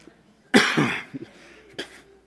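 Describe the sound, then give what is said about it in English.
A harsh coughing burst, then a couple of small throaty hacks and one more sharp cough shortly after. Loud and raspy, with no talking. “I might have to preach a Sunday morning sermon and not get into a coughing fit.”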